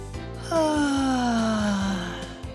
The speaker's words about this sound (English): And that was the last nighttime noise Benji heard, a great big yawn.